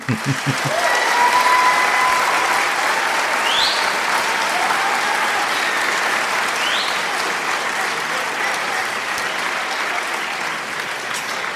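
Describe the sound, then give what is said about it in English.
A sustained round of applause, dense and steady clapping from a crowd that holds at an even, loud level for about eleven seconds, with a few faint whistles rising above it. “I feel like a round of applause is necessary. Insert round of applause in the track.”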